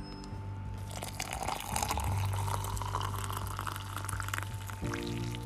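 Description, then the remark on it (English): Hot water pours steadily into a coffee cup for several seconds, a continuous liquid splash that shifts slightly in pitch as it fills, with a low hum underneath and no talking. “We're just going to go with a cup of coffee because we know you're ready.”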